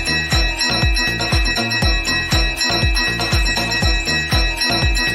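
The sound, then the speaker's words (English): A bell rings rapidly and steadily, struck about twice per second with a bright, sustained metallic shimmer over each hit. Loud, with no voices. “Ring the bell.”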